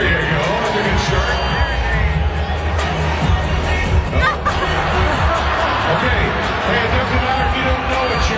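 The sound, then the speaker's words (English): A large arena crowd at a Canucks hockey game in Rogers Arena, Vancouver, during the Kiss Cam, with the PA announcer heard; the crowd murmurs and chatters steadily throughout, a dense, continuous hubbub of many voices with occasional swells of cheering and a broad, booming background roar. “This is from a Canucks hockey game in Vancouver, Rogers Arena. They're doing the Kiss Cam and I'll just let you listen in here.”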